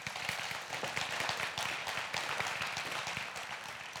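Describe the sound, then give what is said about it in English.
An audience applauding: dense, steady clapping from many hands, fairly loud and sustained throughout, with no voices standing out. “Will you guys help me in giving her a warm round of applause?”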